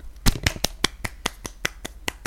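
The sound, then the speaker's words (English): A steady run of about a dozen sharp hand claps, evenly spaced and quick, loudest at the start and then slightly softer, with no talking. “Hand clap.”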